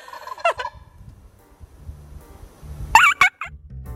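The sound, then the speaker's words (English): A turkey gobbles in two loud, rattling bursts, a short warbling call early on and a longer, harsher gobble near the end, over low rumbling background noise with no talking. “That turkey was looking for a goddamn fight.”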